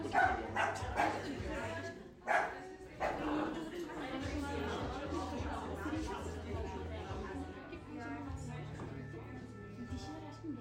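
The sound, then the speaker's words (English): Several dogs bark in sharp bursts near the start, then whimper and yip intermittently over steady crowd chatter and a low hum in a busy dog cafe, where the dogs walk around freely among customers. “Customers can pick up their menu items and bring them to the side where the dogs walk around freely.”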